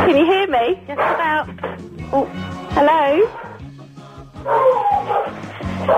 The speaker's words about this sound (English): The dog's going mad.